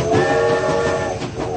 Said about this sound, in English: because the trains are a-coming.